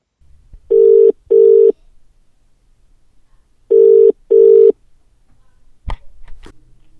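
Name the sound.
telephone ringing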